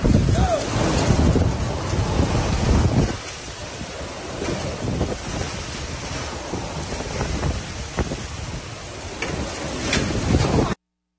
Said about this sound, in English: And here's some of the footage of the winds.